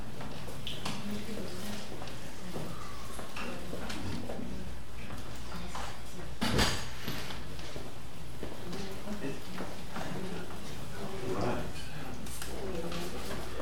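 Footsteps shuffle across a room, then a door shuts with a single solid thump midway through, followed by quieter steps and faint room noise.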